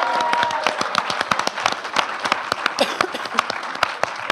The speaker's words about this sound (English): A round of applause